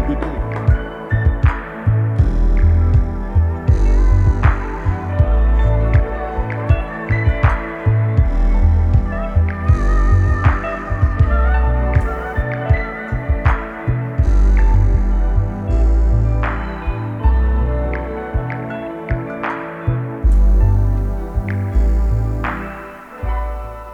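A full, bass-heavy music track plays loud and close, with a steady thumping beat and sharp percussive hits, running continuously before thinning out slightly near the end.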